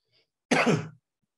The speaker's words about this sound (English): That even made me cough.